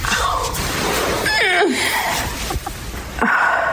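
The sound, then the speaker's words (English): A woman lets out strained grunts and a falling, drawn-out moan as she gets up, followed by another short effortful groan, over steady background noise. “Listen to these grunts and moans I've recorded of her”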